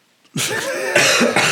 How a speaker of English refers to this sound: Try not to cough. Oh, his cough. I thought you thought of something funny, and I was like, oh my god, it must be hilarious. He's turning purple. No, I was just trying not to cough.